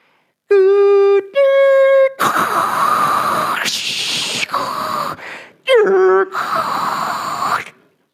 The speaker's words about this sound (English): The people under 35 are looking at me like I'm crazy. And the people over 35 are going, that's a modem. I used to have one of those. That's how we connected to the internet.